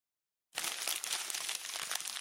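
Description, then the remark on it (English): Loud crinkling of a crumpled piece of paper left on the floor being handled, starting abruptly after a moment of silence and continuing as a dense, crackly rustle with no voices. “Who left this crumpled up piece of paper on the floor?”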